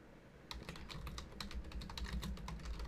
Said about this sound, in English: Okay, let me start typing.